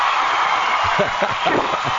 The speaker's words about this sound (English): Special applause there for you.